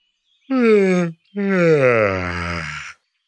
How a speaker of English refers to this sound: Was that a bored, anxious, or sleepy yawn?